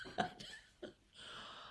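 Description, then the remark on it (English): A sudden, sharp sneeze bursts out, followed by a smaller second snort and a soft breathy exhale, heard on its own without any talking. “Bless you.”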